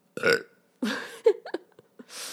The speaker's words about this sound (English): So hopefully by the end of this year, I'm going to burp. Hold on.